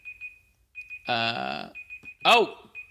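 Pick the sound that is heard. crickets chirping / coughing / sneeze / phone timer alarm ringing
phone timer alarm ringing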